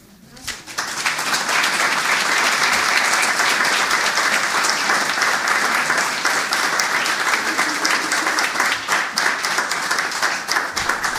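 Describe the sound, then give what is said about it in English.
An audience breaks into loud, sustained applause for the readers after a reading, a dense crackle of many hands clapping that starts abruptly and holds steady for about ten seconds. “And all four of the readers tonight, one more round of applause.”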